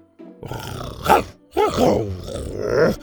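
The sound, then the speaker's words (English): A voice imitates a young dinosaur growling as it crawls through a gap in tree roots and turns to call another to follow: two fairly loud, rumbling growls in quick succession, the first swelling to a sharp peak and the second longer and more drawn out. “Buck tried crawling through a gap in the roots and turned and growled for Scoot to follow.”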